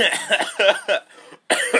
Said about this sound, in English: Coronavirus? Ew, you're coughing on me!